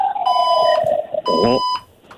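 A fire alarm goes off during a live radio show in a building housing radio stations, in two loud, harsh electronic blasts, each about half a second long, with a brief gap between them. A voice briefly cries out under the second blast.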